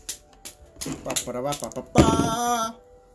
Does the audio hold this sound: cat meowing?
no